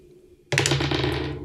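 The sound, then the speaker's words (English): Dice abruptly clatter and rattle across a hard desk, a loud burst of clicks over a low, ringing hum from the vibrating microphone boom arm that lingers for about a second. “The boom arm is vibrating when you roll the dice.”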